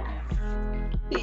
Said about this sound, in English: I think my dog is making some noise.